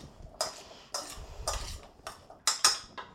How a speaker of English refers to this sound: So, yes, 1/2 pound sweet potato peeled and diced into small cubes. Put those in a bowl and drizzle them with about 1 tablespoon of olive oil. And then take a spoon and stir them up.